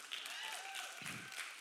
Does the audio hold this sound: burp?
no